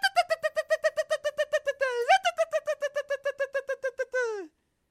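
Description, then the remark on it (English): A voice imitates a creature's chirping song: a rapid run of about twenty high, bright chirps, fairly loud, broken by a rising squeak midway and ending in a falling glide. “They're just emitting those chirps as this one's holding it and kind of like walking ahead, and they're doing this like song.”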